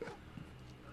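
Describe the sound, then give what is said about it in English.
A dog gives a brief, rough growling yelp at the start, followed by a second short snarl a moment later, loud over a low background rumble. “Dog's going to get strangled.”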